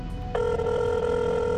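A cell phone in airplane mode starts ringing on a plane during a midnight flight to Southern California, a steady loud electronic tone over a low, constant background rumble, continuing without pause to the end.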